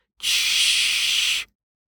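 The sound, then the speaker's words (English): A single sustained burst of steam hissing from a steam engine as steam is forced onto the other side of the piston head, bright and loud, starting abruptly and holding steady for just over a second before cutting off sharply into silence. “steam was now being forced onto the other side of the piston head, shoving it back toward the boiler”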